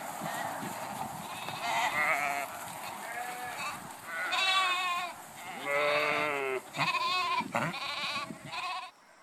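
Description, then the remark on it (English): Several sheep bleat in a loose overlapping chorus of wavering, fairly loud cries as they are being called in, with a steady outdoor murmur underneath between calls. “Sheep. Come on. Come on, sheep. Come on, sheep.”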